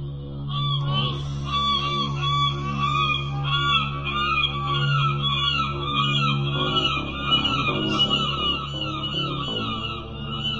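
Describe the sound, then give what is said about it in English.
Harsh, strained bird squawks and honks, like geese crying out in distress, call over and over without pause, loud, with a steady low hum underneath. “Yeah, those birds sound like they're dying.”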